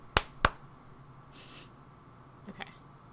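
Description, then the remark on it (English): Two sharp hand claps in quick succession, about a quarter second apart, used to mark the beginning of a recording as a sync point, followed by a brief soft hiss and a couple of faint taps in an otherwise quiet room tone. “And then do I clap to mark the beginning? Yeah, that works.”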